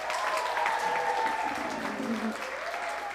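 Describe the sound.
Steady audience applause, a dense wash of many hands clapping at an even loudness for a few seconds, with some faint tonal murmurs or voices underneath.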